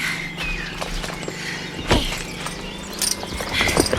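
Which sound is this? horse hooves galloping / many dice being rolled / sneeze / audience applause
horse hooves galloping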